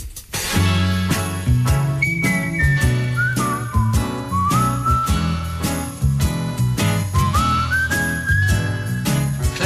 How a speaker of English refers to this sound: And, right, let's have a bit of virtual whistling now, shall we?